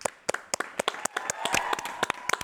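A quick, uneven burst of sharp hand claps, roughly a dozen or more in a couple of seconds, crisp and fairly loud over a faint murmur of background voices.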